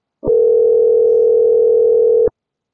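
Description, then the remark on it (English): A single ringback tone from an outgoing phone call: one steady, even electronic hum lasting about two seconds, fairly loud and clear, with no voices around it. “Somebody pick up the phone.”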